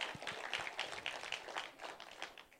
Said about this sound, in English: So let's show our college students another round of applause to thank them for who they are.